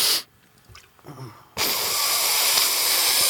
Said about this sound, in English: There you go. Was that close? That was a hard sniff. That was good.